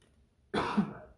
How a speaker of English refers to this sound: Sorry about the cough.